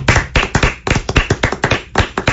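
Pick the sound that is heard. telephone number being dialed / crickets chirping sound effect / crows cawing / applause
applause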